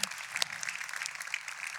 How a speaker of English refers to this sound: It's the people who have recently committed to being new members of our church. We have a slide up here with their pictures. If this is you, we want you to stand. If there's anybody in the room that's here. But more than anything, we want to clap.